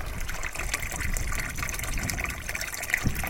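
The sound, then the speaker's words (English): Water pumped by a solar-powered pump with a float switch gushes and splashes steadily into a water trough, a continuous pouring sound with bubbling and trickling textures throughout and no voices. “The water's running away, the pump's running.”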